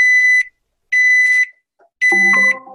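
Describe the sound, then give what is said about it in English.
An oven timer beeps three times in loud, shrill, evenly spaced tones, each about half a second long, signalling the food is ready; a lower chiming tone sequence overlaps the final beep. “You got 4 beeps on the oven.”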